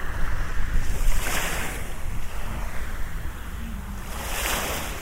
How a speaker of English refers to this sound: I am in Southend-On-Sea. Most of us call it just Southend, but it is officially Southend-On-Sea, and it's in Essex in England. And I'm just going to be walking west along the... Whoop, the sea is cold. It's just touching my toes along the seafront.